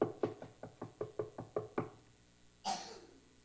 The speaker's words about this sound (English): So I came up the front steps at the very moment I had told her that I would come, anxious to see her. I knocked on the door.